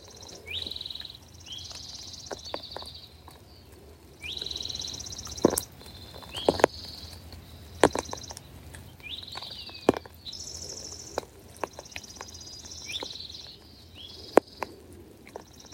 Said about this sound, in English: Feeling into the impact the songs of the birds have on our heart. Just feeling without thinking.